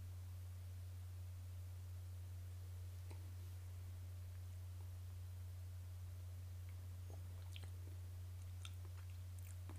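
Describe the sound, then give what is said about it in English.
Quiet sips and tasting of whiskey: faint wet lip smacks and tongue clicks scattered over a steady low electrical hum, with no one speaking. “Let's take a sip of this and see how it goes in the palate.”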